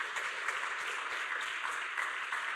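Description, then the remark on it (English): An audience applauds steadily for a couple of seconds, a dense, even wash of many hands clapping at once with no voices over it, a round of applause given to the Lord. “Come on, can we give the Lord a round of applause for that?”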